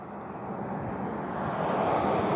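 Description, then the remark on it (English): A broad, steady rumble of traffic as cars come by on a street during a walk outdoors, slowly swelling louder over a couple of seconds, with no voices. “Hold on, you probably hear cars coming by.”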